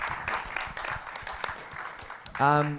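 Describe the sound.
An audience applauds with a dense, steady patter of many clapping hands at moderate volume, and then a loud voice cuts in over the tail end of the clapping.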